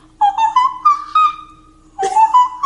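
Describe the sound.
Someone whistles a short, high tune in two bright phrases, imitating a singer's whistle-register notes, the notes sliding and wavering slightly, with a brief pause between them and no talking.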